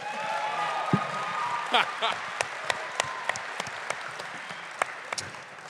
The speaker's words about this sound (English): See, my brothers are here. Come on, y'all. Clap for my brothers.